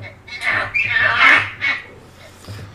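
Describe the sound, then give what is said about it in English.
Proboscis monkey calls: loud, harsh, nasal squawks in a few uneven bursts with short pauses, ending with one fainter call. “Here's what they sound like.”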